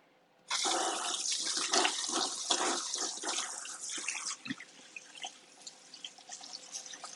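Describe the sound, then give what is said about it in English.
A faucet turns on and water gushes steadily for several seconds with splashing as hands are rinsed after coating chicken pieces, then the flow stops, leaving faint drips and trickles. “Wash my hands off real fast, y'all.”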